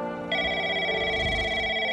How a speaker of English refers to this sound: Okay, let's check in on Leanne in the control room. She's about to receive an expository phone call.